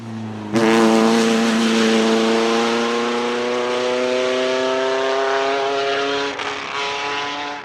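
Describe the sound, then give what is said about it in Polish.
An original vintage Bugatti race car engine, driven by a young driver racing up the road toward Morskie Oko on the Zakopane course, bursts in loudly and holds a rich, buzzing roar, its pitch climbing steadily as it accelerates, continuous with a brief dip near the end. “To, czego słuchacie, to dźwięk oryginalnego silnika Bugatti, którym młody kierowca pędził drogą w stronę Morskiego Oka.”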